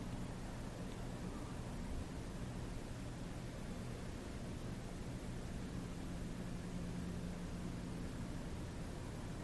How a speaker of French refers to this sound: Alors, ça peut être la présence au son, même du ventilateur.